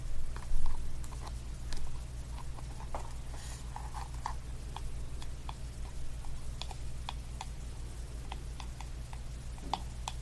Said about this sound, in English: And then gentle tapping. That might feel really good. The tapping sounds remind me of the sound of the rain. With something gentle.